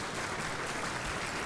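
audience applause

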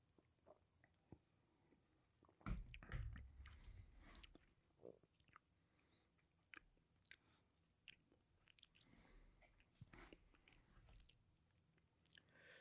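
sipping and tasting beer

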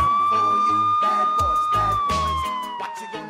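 police car siren

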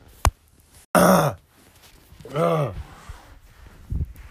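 blowing nose

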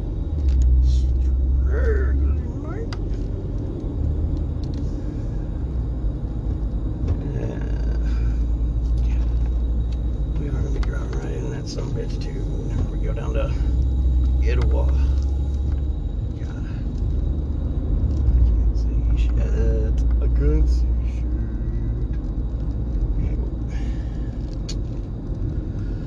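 car interior rumble

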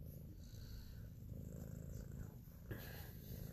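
cat purring

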